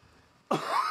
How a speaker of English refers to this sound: Don't cough into it.